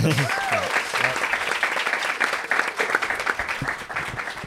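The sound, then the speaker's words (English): An audience claps steadily for several seconds, a dense, even crackle of many hands at fairly constant loudness, with a brief vocal cheer or whoop rising over it at the start. “Anyway, we got to clap it up for that.”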